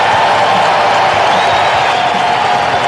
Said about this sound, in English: Performance of the season for Patrick Corbin, and he gets a deserving standing ovation.